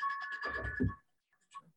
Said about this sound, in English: Yeah, I've kept this ringtone for like 3 years now.